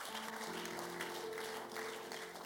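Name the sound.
audience clapping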